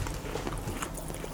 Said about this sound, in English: For those of you that don't know, I'm eating beer. Or I'm drinking beer and eating cookies at the same time. You are. I'm chewing right into the mic, which is awesome.